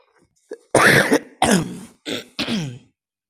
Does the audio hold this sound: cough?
yes